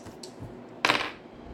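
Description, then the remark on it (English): Dice rolled for a hit rattle across a table: a faint tick, then a short, bright clatter of hard plastic tumbling for a moment before settling, with no voices over it. “Okay, roll the hit.”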